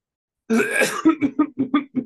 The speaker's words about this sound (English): All right. That was a fake cough, just so everyone knows. That sounded real. You had me. Really? It sounded like me, at least. Oh, I thought it sounded very fake.